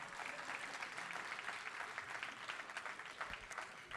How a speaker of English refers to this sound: Give a hand clap so I can drink this water without it being awkward.